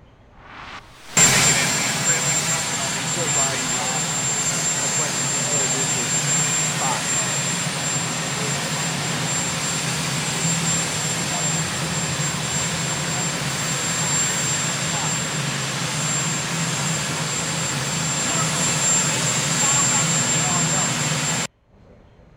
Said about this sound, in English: Obviously, the chopper was very loud.